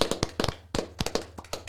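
A brief, scattered round of applause from a small group, sharp hand claps landing in an uneven flurry at close range with no voices.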